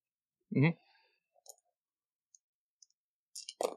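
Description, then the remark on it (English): Ten dice are rolled in a game to find resources, clattering and clicking across a table in sparse, scattered bursts, fairly quiet, after a brief vocal sound at the start and ending in a final rattle. “Can I get you to make a roll for finding resources? And that's so it's all 10 dice.”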